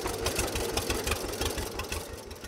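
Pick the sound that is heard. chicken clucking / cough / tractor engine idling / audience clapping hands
tractor engine idling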